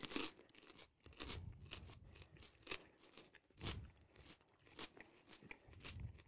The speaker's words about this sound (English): An unexpected habanero challenge this Sunday. Are you ready? Can we cheers it? A little pepper. And then I'll do 3, 2, 1, pop it, and then I'll do the 5 second countdown of chewing.